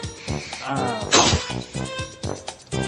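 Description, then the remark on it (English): A single sharp sneeze bursts out in the middle, loud and breathy, with people talking before and after it. “Bless you.”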